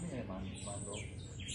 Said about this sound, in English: Look at this little bird eating out of my hand. Literally. Look at that. He was just enjoying himself.